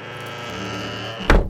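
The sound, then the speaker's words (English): A door shuts behind a departing man with a single heavy, low thud, sharp and fairly loud, arriving near the end after a steady bed of sustained musical tones. “Henry Baker, said Holmes, when he had closed the door behind him.”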